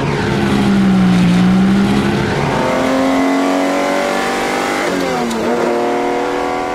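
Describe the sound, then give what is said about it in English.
The engine of a powerful red Italian sports car revs loudly, its pitch climbing and dropping through a few gear changes over several seconds, with no voices. “Or is that one of those red Italian things?”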